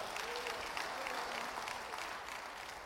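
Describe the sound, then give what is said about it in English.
An audience claps steadily, a dense wash of many hands applauding at a constant, fairly loud level throughout, with faint murmuring voices underneath. “Clap those hands.”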